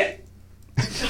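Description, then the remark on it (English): A single loud sneeze bursts out near the end after a quiet stretch, followed by a brief spoken exclamation. “Bless you.”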